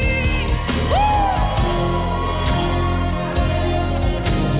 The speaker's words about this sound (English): That is the kind of worship I want. Just put your head. Somebody scream.